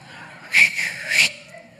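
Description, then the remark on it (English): A person at a back door gives a short, sharp two-part whistle to call wedding guests out, rising loud at the start and again at the end, lasting under a second with no talking over it. “goes to the back door and he whistles.”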